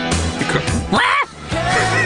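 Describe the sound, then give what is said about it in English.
A female pop vocal over a full backing track breaks into a brief, strained, scream-like cry near the middle, sliding upward before the music carries on at steady volume. “She's got a little bit of a yarl in there.”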